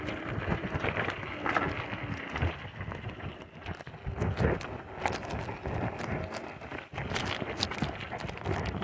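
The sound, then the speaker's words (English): A pig trots about, its hooves tapping in a quick, uneven patter over steady outdoor wind rumble. “The pig is out and about.”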